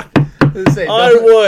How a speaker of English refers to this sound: I just knocked on wood. I did it right above the microphone so everyone heard it.